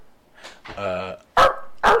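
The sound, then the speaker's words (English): A person imitates a small dog's bark, like a Pomeranian, fairly loud: a drawn-out, whiny voiced yelp followed by two short, sharp yaps. “I sounded like a goddamn Pomeranian just now.”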